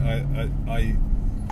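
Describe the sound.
Steady low rumble of a car's interior road noise while driving, with a constant engine drone underneath a person talking.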